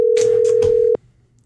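A single steady electronic ring tone from an outgoing phone call that goes unanswered, fairly loud, lasting about a second before cutting off abruptly, with faint muffled voices underneath.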